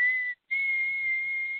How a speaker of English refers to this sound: Whistling is such an obnoxious noise. Let me try to whistle like this.